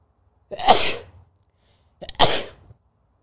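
Two sneezes in a row, loud, each a sharp burst with a breathy sharp tail, separated by a brief pause of silence.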